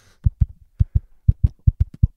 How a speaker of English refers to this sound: Sorry, that's your heartbeat.